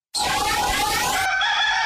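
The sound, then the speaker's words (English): A rooster crows loudly, one long, strained cock-a-doodle-doo that holds its harsh, rising pitch and cuts off abruptly, with no voices around it, played as a theme sound effect. “I think we at least have to have Rooster's theme song.”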